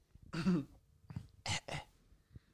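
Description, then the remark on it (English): A short run of harsh coughs: one longer throaty hack, then three quicker bursts in quick succession, with a faint small sound trailing at the end. No one speaks. “Coughing.”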